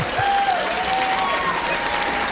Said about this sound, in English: That was a little rousing round of applause for you.